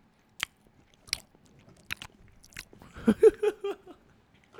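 Someone bites into a crunchy cookie, with several sharp crackling crunches spaced about a second apart, followed by a louder burst of wet, smacking chewing toward the end.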